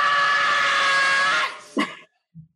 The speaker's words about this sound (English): I think here's the wolf howling. The wolf howling.